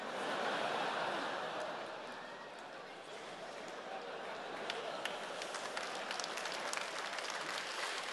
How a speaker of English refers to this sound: Audience took a sec. Yeah, tentative clapping.